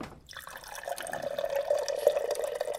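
A water cooler dispensing water: a steady stream of liquid pouring into a cup for a couple of seconds, with faint gurgling and no voices.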